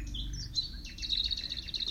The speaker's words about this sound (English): Observe the flowers and the sounds of the birds.